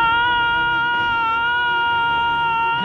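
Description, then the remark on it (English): A man screams over a radio channel: one loud, unbroken, high-pitched wail held steady for about three seconds with a strained, buzzing edge and no pauses or words. “And you see dangling on a wire behind it a mech suit, and you hear in your comms Rodney screaming.”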